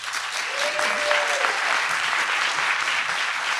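A steady round of applause from a crowd, dense and continuous clapping filling the whole stretch at an even, fairly loud level, with a brief faint whistle-like tone early on.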